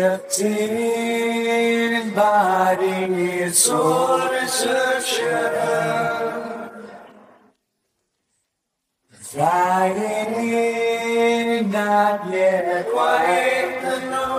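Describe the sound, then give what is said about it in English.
Sustained sung vocals drenched in reverb, with a soft echoing tail; two long phrases are separated by a brief moment of silence, and no instruments or talking are heard. “Then he threw a little reverb on it, which creates a slight echo and creates this sense of vastness, and the end result sounded like this.”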